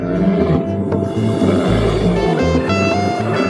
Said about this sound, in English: Or we could hear some lions roaring.